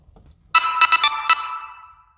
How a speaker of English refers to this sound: I'm sorry, that's a message that I got on my phone.